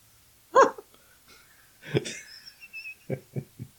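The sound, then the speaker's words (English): A large pit bull dog of about 80 pounds vocalizes: a short sharp yelp, then a drawn-out whiny note, followed by three quick yips in a row, with no talking. “What kind of dog is that? He's a pit bull.”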